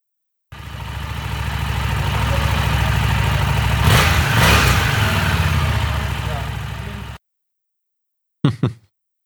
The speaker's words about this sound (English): Here's a stock Street Rod, which is the 750 engine.